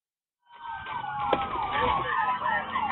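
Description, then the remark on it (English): An iPhone alert tone kicks in abruptly and keeps going, a loud warbling, siren-like pattern of rising and falling tones over faint background noise. “That's my iPhone.”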